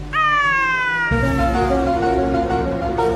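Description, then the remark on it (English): A voice imitates a loud, strained yowl of a Tonkinese cat whose tail is caught in a closing window: a high wailing cry that slides downward, then drops into a lower, harsher drawn-out moan lasting about three seconds. “She sounded like a window closing on a Tonkinese cat's tail.”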